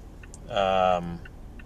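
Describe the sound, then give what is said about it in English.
A car turn signal blinker clicks softly in a steady, regular rhythm inside the car while driving to a grocery store, briefly overlapped by a louder voice in the middle. “You hear that little clicking sound? That's the blinker.”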